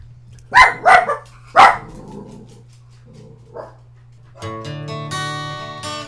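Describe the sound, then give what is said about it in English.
A dog barks three times in quick succession, loud, followed by a faint whimper, then a sustained tonal hum with rich harmonics begins and continues to the end. “you done barking?”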